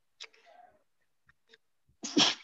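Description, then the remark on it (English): A sharp sneeze bursts out near the end, preceded by a short breathy buildup and a few faint clicks in an otherwise quiet stretch. “Bless you.”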